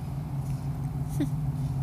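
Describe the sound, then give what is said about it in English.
A big, black truck pulling in, its engine droning in a steady low rumble throughout, moderately loud, with a brief high squeak cutting in partway through. “There is a big, black, noisy truck pulling in now.”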